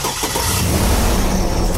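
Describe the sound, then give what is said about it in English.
A 6-liter V8 engine, its battery removed, turns over and catches on a NOCO Genius Boost lithium jump starter hooked directly to the battery cables, quickly building into a loud, steady rumble with a rough low growl and no voices. “We removed the battery from the 6-liter V8 engine and hooked Boost directly to the battery cables.”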